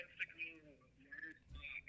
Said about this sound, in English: Right, it broke up. Your phone keeps breaking up lately. I haven't moved.